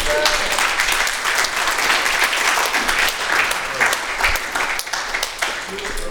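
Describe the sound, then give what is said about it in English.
A crowd applauds steadily and loudly for several seconds, a dense wash of many hands clapping together with no pauses. “Now, it's one thing to clap.”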